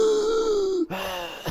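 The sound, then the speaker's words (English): A voice imitates the raspy, strained breathing of an unconscious man, likened to Darth Vader's breathing: a long groaning inhale with a steady tone that slowly drops, then a short break and a rougher, wheezy exhale. “His breathing is raspy and strained.”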